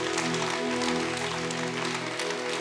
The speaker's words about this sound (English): Come on, give God a big hand clap. Come on, praise God.